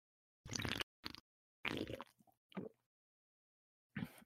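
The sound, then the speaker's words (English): Several wet, noisy slurps of a drink in short bursts, with a couple of quick gulps and liquid sounds between them, then a final slurp after a pause; no talking. “That slurp made it sound already very unappealing.”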